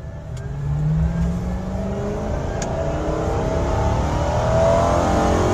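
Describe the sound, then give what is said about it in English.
A Crown Victoria patrol car engine revs loudly, its droning pitch sweeping upward and settling over several seconds, with a steady rumbling roar throughout and no voices. “Well, it's obviously the Crown Vic. That's why I bought one.”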